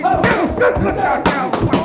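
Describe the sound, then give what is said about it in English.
Heavy punches land in a fistfight down the street, a little man slamming away at another man, four or five dull thuds at an uneven pace, while men shout and grunt loudly throughout. “that little fella slamming away at him”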